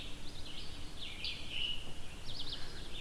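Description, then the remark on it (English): Red-eyed vireo and scarlet tanager songs ring out in short, high phrases, recorded outdoors in the field, over a steady outdoor hum with a faint insect drone, probably a cicada, and no talking. “As you can hear right now, I'm surrounded by birds. Red-eyed vireos, scarlet tanagers here as well.”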